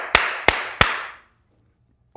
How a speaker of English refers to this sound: That clap, it reminds me of like back in the 80s, that clapper commercial where they turn the lights off and on.